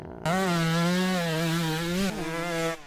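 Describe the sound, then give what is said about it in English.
A two-stroke engine buzzes loudly at a high, steady rev with slight wavering, briefly dips in pitch near the end, then trails off. No one speaks. “They're all two-stroke.”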